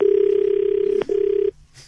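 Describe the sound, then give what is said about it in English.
A phone call ringing on the line: one steady, loud electronic ring tone with a brief click partway through, cutting off abruptly, followed by faint background noise. “she is going to happen to make an inadvertent call to him, and he's going to hear what unfolds at the tanning salon.”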